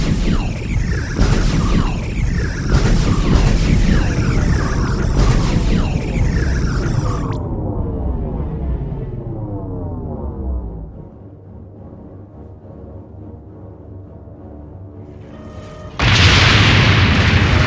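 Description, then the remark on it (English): Sci-fi starship forward cannons fire on an intruder ship, blasts booming several times in quick succession over a dense, roaring barrage. Descending whines follow, a low rumbling explosion fades, and a sudden burst of hissing noise ends it. No voices. “Gunnery, lock forward cannons on the intruder ship. Weapons are locked on, Minister. Fire!”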